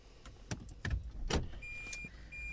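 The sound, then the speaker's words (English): Inside a car, several clunks and clicks land over a low, steady hum, then a thin, high electronic whine settles in as the vehicle quietly runs. No one speaks. “Is this car even on now?”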